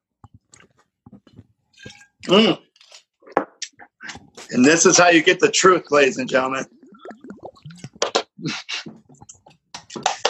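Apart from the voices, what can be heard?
gulping a drink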